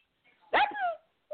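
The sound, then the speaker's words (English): A small pit bull, chihuahua and Jack Russell mix rescue dog lets out one loud bark that slides downward in pitch into a brief whine, with quiet before and after and no one talking. “She's some kind of weird pit chihuahua Jack Russell mix is my kind of guess.”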